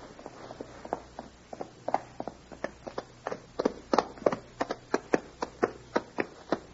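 A horse's hooves thud in a steady, rhythmic gait as someone rides toward the listener, starting faint and growing louder over several seconds, with no voices, just a low hum underneath.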